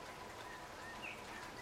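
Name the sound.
steady rain falling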